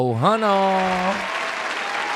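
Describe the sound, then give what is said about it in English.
A brief burst of applause sound effect, steady clapping noise that starts with a rising whoop and runs for about two seconds before it stops abruptly. “Yeah, so, damn, bro, we need a whole round of applause, bro. I mean, nigga cut us short, bro.”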